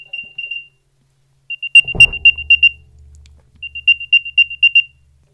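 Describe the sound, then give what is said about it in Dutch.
An Apple AirTag on a set of keys sounds its locator chime after Play Sound is tapped in the app: three bursts of rapid, high-pitched electronic beeps, with a soft thump and low rumble in the middle burst. No one speaks. “Dus zodra je de sleutels gaat zoeken, zeg maar, dan speelt hij dit geluidje af zodra je op de speelgeluid af knop tikt.”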